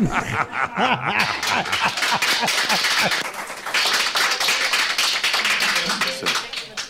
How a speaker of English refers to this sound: Dude, I laughed so hard when that happened. It was funny that all the plants were laughing, were clapping too, but...